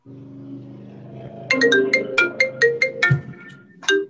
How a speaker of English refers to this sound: Am I the only one that do that when my phone be ringing sometimes? My phone was on vibrate.